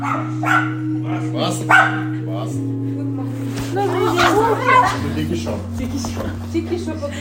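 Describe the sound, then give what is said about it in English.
Two dogs bark and yip in short, excited bursts, with a steady low droning tone running underneath throughout. “When we reached the top, they were all there to meet me, including their two very sweet dogs.”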